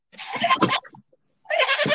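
A goat bleats twice, loudly: a wavering cry of under a second, a brief pause, then a second bleat that runs to the end. No talking alongside.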